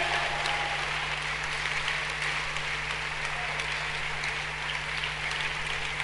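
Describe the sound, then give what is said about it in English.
An audience claps for Jesus steadily, a dense, sustained wash of many hands that holds at an even level for the whole stretch with no clear pauses, over a low constant hum. “Clap for Jesus again.”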